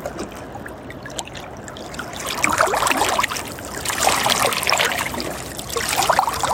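Steady trickling water flows and babbles, a continuous bright splashing that swells slightly louder in the second half, with no voices.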